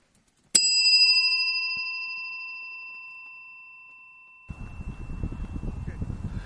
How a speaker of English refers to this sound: Ooh, except for that little bit of wind. It's so nice and sunny out.